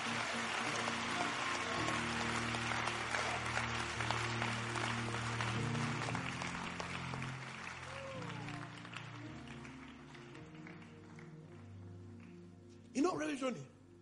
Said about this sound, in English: Those of you who are clapping, you heard my message. Those who are clapping, my spirit is upon you.